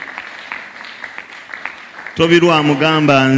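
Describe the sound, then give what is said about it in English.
An audience claps in scattered, uneven bursts for a man coming forward to confess Christ. After about two seconds a loud male voice starts speaking and takes over the sound. “Some of you shall just come clap for him.”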